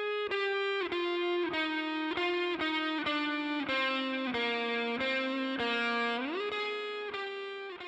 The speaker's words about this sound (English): Then a guitar with distortion.